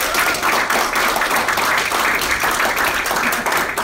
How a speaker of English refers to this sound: But it's an actual, genuine honour to speak to this guy, John Tyler Christopher, everybody. A round of applause.